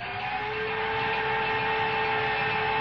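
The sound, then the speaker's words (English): A blender runs without pause, frothing a mix of honey, garlic and vinegar: a steady, loud motor whine with a sustained high hum riding over a broad grinding rush that holds level throughout. No one speaks. “Why don't we just run this through the blender? Froth it up a little bit, huh?”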